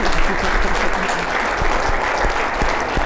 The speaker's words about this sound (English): And I think that we should give a round of applause to your sister and my brother.